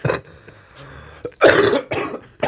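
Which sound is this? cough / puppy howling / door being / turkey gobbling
cough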